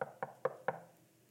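Four quick, evenly spaced knocks on a hotel room door, sharp, each with a short hollow ring, followed by quiet.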